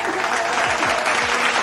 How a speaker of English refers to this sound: Clap.